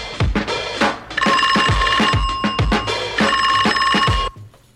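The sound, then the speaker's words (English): A phone's electronic message alert plays a bright, repeating chime melody over thumping bass beats, loud for about three seconds, with no one talking. “Yo, I just got a message that Black Cloud, East Coast Dre, his phone is about to die.”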